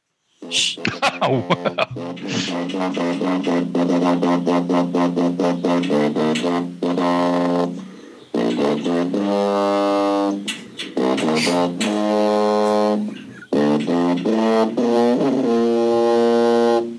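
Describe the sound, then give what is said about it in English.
A tuba played back through a phone speaker, loud and somewhat distorted, with sustained wavering brassy notes in several phrases separated by brief pauses. “That was Sandy on the tuba.”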